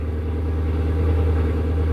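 A neighbour's Mustang, just fired up next door, rumbles at a steady idle, a deep, even, throaty drone with strong low harmonics and no change in loudness across the two seconds. No one speaks.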